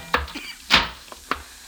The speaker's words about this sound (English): The room clerk looked worried, but I punched the elevator button, and just 43 seconds and five floors later, I was knocking at room 502.